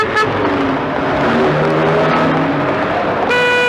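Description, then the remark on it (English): Dense, steady road traffic rumbles as engines drone and cars pass, and a loud car horn blares near the end. “No rest from danger, though, because all around us is that deadly daily danger, traffic.”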